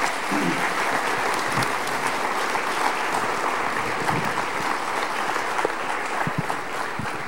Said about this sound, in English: Can we give him a round of applause for sharing that with us today?